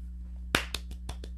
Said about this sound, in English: Thanks. I give you a notable clap.